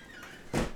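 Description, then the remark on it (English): A door is blown open by the wind, banging open in one sudden, loud rush and thud that rises out of a quiet background and dies away within a fraction of a second. “The door just opened. Holy cow! Mr. Wind.”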